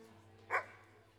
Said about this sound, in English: The barking was soft. It had been going on since she'd come into the café. It was a plaintive sound, produced by a creature sprawled over the floor